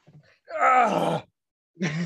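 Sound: voice imitating a scream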